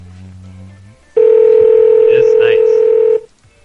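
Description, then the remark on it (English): A phone line rings back during a Google Voice call with a single loud, steady electronic tone lasting about two seconds, preceded and followed by a faint low murmur. “It's ringing. Oh, yeah, it's ringing. It's because of Google Voice.”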